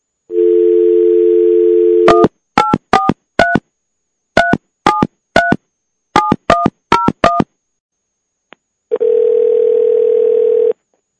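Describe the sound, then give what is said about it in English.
A steady telephone dial tone, then a quick run of about a dozen keypad dialing beeps, a short silent pause, and a long, loud ringing tone on the line as a guest is called. No one speaks. “We about to call him up right quick, see if this dog answered the phone, man.”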